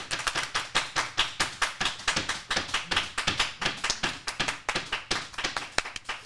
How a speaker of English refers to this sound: what a great round of applause